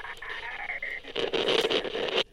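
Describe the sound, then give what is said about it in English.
A thin, steady electronic whine gives way to a loud, harsh burst of radio static that hisses and crackles for about a second before cutting off abruptly. “Another burst of static shut the argument up.”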